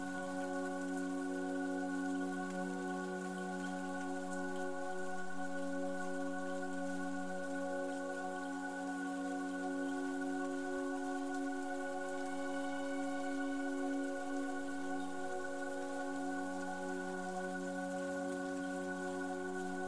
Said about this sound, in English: Take a few moments on your own to simply be in the rain.